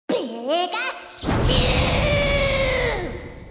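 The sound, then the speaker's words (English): Pikachu from the video game Super Smash Bros. cries out in a squeaky, high-pitched cartoon voice with warbling rising and falling syllables, then a loud sustained crackling burst with a held tonal cry takes over before fading. “And imaginary, like Pikachu in Super Smash Bros.”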